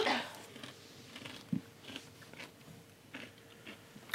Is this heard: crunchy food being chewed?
yes